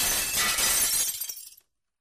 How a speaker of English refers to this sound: In an unimaginable explosion of terror, she immediately bolted to the door, only to fumble with the lock as bigger and bigger rocks came crashing through the window, which burst apart in a spray of glass shards.